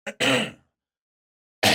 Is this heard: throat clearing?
yes